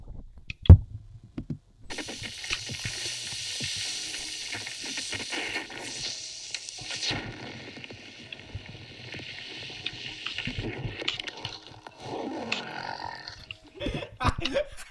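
Loud hissing fizz of Coke frothing as it hits Mentos, spraying for about ten seconds from between two bottles into a man's mouth and down his shirt, mixed with wet gurgling and sputtering as the foam fills his mouth. Choking, burp-like noises break through near the end.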